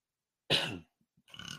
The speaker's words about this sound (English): Sorry, the bubbly drink is getting to me, causing me to burp.